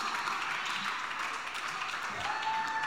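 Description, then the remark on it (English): A church audience applauding during the pastor's story: a dense, steady wash of many hands clapping at once, holding an even level for the full three seconds without a clear break. “That wasn't the part they were supposed to clap that, no.”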